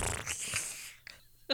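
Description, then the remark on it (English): A voice imitates a wet fart with a sputtering, breathy burst that trails off, followed by a short sharp puff near the end, made by boys playing a trick from the bushes. No words are spoken. “And this is a wet fart.”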